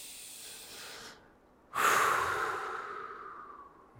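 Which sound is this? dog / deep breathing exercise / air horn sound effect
deep breathing exercise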